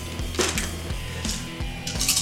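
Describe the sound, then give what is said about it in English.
Dice rolled during a tabletop role-playing game clatter and tumble across a hard surface: a string of sharp, rattling clicks and dull knocks at an uneven rhythm, moderately loud, with no voices. “That's a scary dice pull.”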